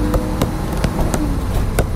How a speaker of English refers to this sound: Someone is tapping their fingers on the seat.